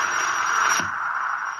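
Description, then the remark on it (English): Steady, thin radio static hisses continuously on its own, a narrow crackly wash with a single soft click partway through; no voices, just the even, faint noise of an empty channel. “Even the static's getting weaker now.”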